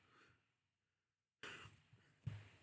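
Heavy breathing: a short breathy exhale, a brief silence, then louder, rasping breaths that end in a harsh, throaty catch. No talking.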